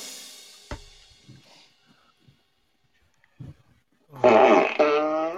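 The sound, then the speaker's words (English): A strained, constipated fart: after a sharp knock and a few faint grunting sounds, a loud, buzzing, drawn-out fart bursts out for about a second. “It didn't want to come out. It was one of those kinds. Constipated fart.”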